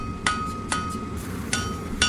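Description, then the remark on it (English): A blacksmith hammers metal while making a railroad spike: four sharp clanging strikes at uneven intervals, each leaving a bright, high metallic ring over a steady low background hum. “Now, why don't you go ahead and make us a railroad spike?”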